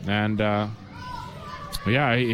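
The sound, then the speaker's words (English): Children shout and yell in loud, high-pitched bursts, with a quieter stretch of murmured background noise between the shouts. They sound boisterous, like kids playing. “I hope the fans have been able to hear us with those kids yelling over there.”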